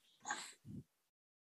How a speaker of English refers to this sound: hang on, my dog's whining. Let me let her out.